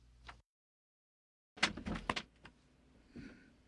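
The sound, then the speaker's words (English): A door opens with a short rattling clatter and a few knocks as someone leaves, after a faint click and a moment of silence, then a quieter settling noise as it finishes. “The door is opening.”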